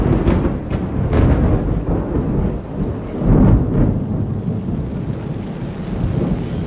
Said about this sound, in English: I'm recording right now just to see if I can catch any of the sound of the thunder for you, because seriously, it shook the buildings. Here it comes. Here it comes. It just lit up.